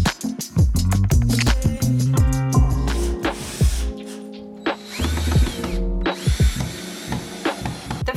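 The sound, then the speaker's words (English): A power drill runs in short bursts, its motor whine rising and falling between clicks, rattles and scraping noises. No one speaks. “I would recommend you purchase, number one, would be a drill.”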